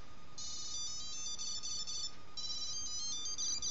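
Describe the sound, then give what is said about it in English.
A Tile tracker plays a little tune while someone searches for it with the app: quick, high-pitched electronic notes in two bright melodic phrases separated by a brief pause, fairly quiet and with no one talking. “But the entire time that you're trying to find it, it plays a little tune.”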